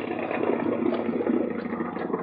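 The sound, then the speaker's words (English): A boat engine idles with a steady, rumbling drone as the boat heads for an old landing on an island, holding at an even level the whole time without pausing or shutting off. “you better cut your engines, huh?”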